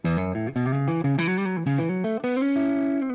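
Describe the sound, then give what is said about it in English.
Electric guitar through a distortion pedal plays a short melodic run of sustained, gritty notes, about six pitch changes over three seconds, loud with no talking. “I have it set up more of as distortion, like I was just playing.”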